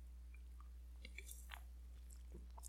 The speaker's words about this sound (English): Taking a sip directly from the can.